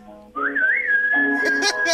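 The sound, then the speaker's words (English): A person whistles a clear, sustained note that bends upward at the start and then holds steady, loud, with some faint voices and noise rising near the end. “Give the whistle.”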